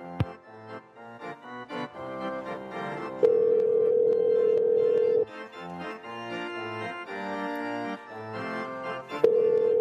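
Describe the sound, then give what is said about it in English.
A steady electronic ringback tone of an outgoing phone call sounds for about two seconds, then starts again near the end, each burst loud and sustained over a bed of background music. No one speaks. “Come on, pick up.”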